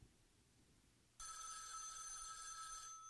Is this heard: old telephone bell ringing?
yes